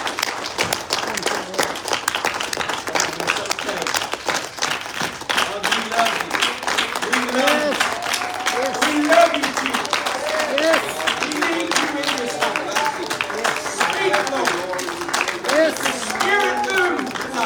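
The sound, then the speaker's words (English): An audience gives a hand clap of praise for Jesus, clapping steadily for many seconds in a dense, even wash of applause, with cheering and raised voices rising through it. “Let's give him a great hand clap of praise.”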